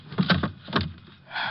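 A few sharp knocks and thuds as a gun is dropped into a wooden drawer, followed by a short scraping slide as the drawer moves. No one speaks.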